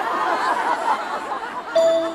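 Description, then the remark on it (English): Glockenspiel notes ring out over a dense, busy musical backdrop, with one bright, sustained metallic tone sounding clearly near the end. “So I layered in some glockenspiel that creates a melody for this section.”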